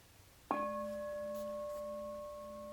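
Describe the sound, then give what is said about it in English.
A meditation bell is struck once with a sharp attack, then rings on in a steady, shimmering tone with several clear harmonic layers, slowly fading but still sustained at the end. “So just, we'll use the bell again.”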